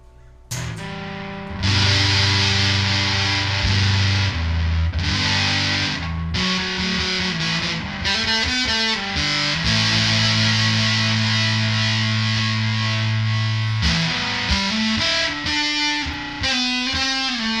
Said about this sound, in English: We're running this through my Princeton Reverb reissue, by the way. Miking it with an SM57. This is Steve's Red Squire Telecaster project. It's got a humbucker in the bridge. And who knows what pickup is in the neck.